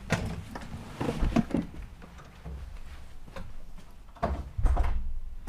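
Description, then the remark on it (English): A door is shut and locked: a few sharp clicks and dull thuds of the latch and bolt, irregularly spaced, with a louder clunk near the end and no talking. “You gotta lock the door.”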